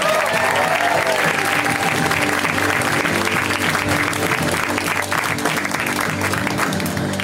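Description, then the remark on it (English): A comedy-show audience applauds steadily for about seven seconds as the next comic is brought on stage, a dense, loud wash of clapping with a few faint cheers or whoops mixed in, and no one speaking over it. “You guys, please start applauding even now.”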